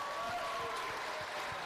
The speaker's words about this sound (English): This, of course, this was a round of applause congratulating my wife on meeting me.